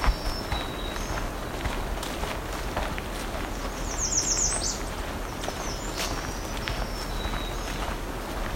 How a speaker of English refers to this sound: We're hearing a lot of black-throated green warblers and some American red starts right now.